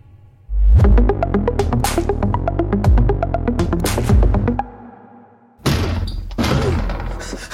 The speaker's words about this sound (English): Clear! The doors are automatic, Dusty. You don't need to kick them in. Never underestimate the element of surprise, Captain. Plus, it's kind of fun.